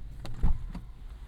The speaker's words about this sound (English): As you can tell, we've just gotten out of the car, and we are at the Mickey and Friends parking structure at the Disneyland Resort.